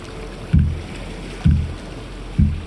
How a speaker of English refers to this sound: I neared, baby steps, pole out. I jabbed the boat.